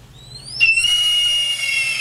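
A single long, piercing red-tailed hawk cry, a shrill scream that rises sharply and then holds steady, loud and clear with no talking over it.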